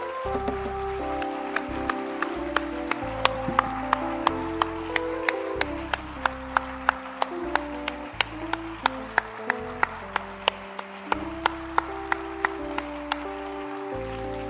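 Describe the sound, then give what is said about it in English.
An audience claps in steady unison, sharp regular claps keeping time over sustained keyboard chords and a moving bass line, with no voices speaking. “And I am very happy with the way you are clapping.”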